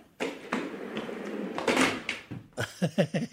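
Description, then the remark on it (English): A door swings and is slammed shut with a firm thud after a few seconds of scraping movement, followed by several short, voice-like bursts. “The door's in the way. It's all right. Just slam it.”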